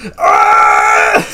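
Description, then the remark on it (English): A person's voice imitates a creature letting out a loud, human-sounding yell: one sustained, strained cry lasting about a second, forceful, with no other talk around it. “And he yells like a normal human being. And it's the funniest sound that could possibly come out of his voice.”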